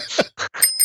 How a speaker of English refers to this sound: The bells. You found them at last. No. Those aren't the right kind of bells that I was thinking of.